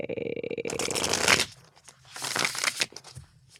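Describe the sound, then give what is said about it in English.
A deck of tarot cards is shuffled: a fast run of papery riffling clicks, a brief pause, then a softer burst of sliding, rustling cards. “That was me shuffling, and now I'm going to cut it, and now I'm going to pull a card.”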